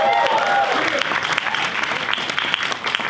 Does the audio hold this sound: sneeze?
no